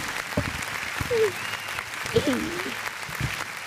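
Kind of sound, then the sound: crowd, applause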